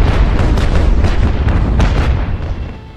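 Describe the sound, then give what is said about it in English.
A warship fires a broadside from the cannons along its rail at the deck of the Williams, loud overlapping blasts in quick succession merging into a deep, continuous rolling roar that tapers off slightly at the end. No voices are heard. “Black muzzles that belch fire and metal, sweeping the Williams deck.”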